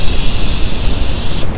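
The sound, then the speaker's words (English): Loud, steady static hiss fills the whole moment, a dense wash of noise with a rough grainy texture that thins out briefly near the end. No voices are heard. “everything at that moment is when the static is just going...”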